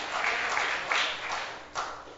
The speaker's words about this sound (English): Clap your hands. Clap your hands for Jesus. Yes. Yes, indeed.